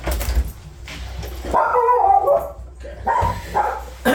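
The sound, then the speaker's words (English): A female dog that has been chewing and swallowing a tennis ball barks and yips in two drawn-out, high-pitched bursts, loud and insistent, with a brief lull between them and no one talking. “She's normally very well behaved. She is chewing and swallowing tennis balls.”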